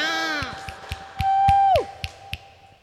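Scattered handclaps from a live audience applauding a person, with a loud, sustained whooping cheer that holds a high pitch before sliding downward, followed by a few more claps.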